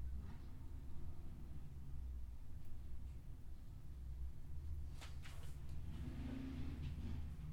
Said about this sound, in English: Please forgive us for the sound of motorcycles.